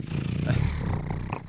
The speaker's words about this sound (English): Yeah, the chain is stuck. Oh, there it goes. There it goes. Ooh. Listen to that baby purr. That baby is purring for you